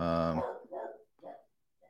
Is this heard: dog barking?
yes